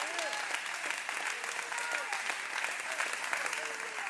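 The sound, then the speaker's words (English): An audience claps their hands unto God, a dense wash of many hands that stays loud throughout, with faint voices calling out underneath. “Come on, clap your hands unto God.”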